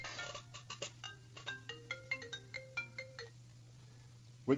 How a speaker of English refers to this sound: Excuse me, I forgot to turn off my cell phone.